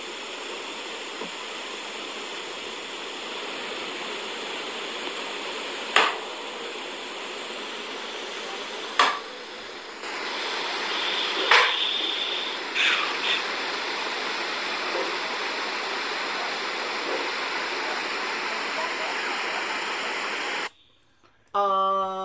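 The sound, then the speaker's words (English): A few sharp, isolated thuds like an axe striking something, spaced irregularly over a steady background hiss, with no voices present. “So, pretty audible noises that, to me, sound like an axe hitting something.”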